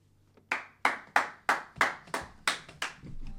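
A single person claps eight times at a steady, moderate pace, each clap sharp with a short decay, followed by a faint low hum.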